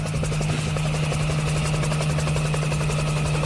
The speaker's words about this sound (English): You went all the way to Florida? Did you take a helicopter? I did.